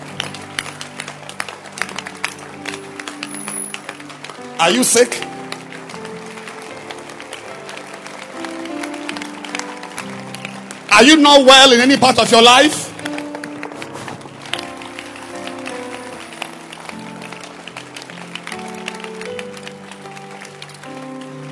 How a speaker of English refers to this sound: Clap again for the prayer. Keep clapping. Don't stop clapping.